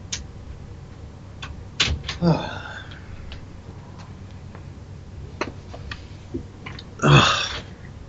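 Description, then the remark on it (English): A door being opened: scattered sharp clicks and taps from the latch and handle, with two louder scraping, creaky bursts, one early and one near the end, over quiet surroundings. “I'm opening the door.”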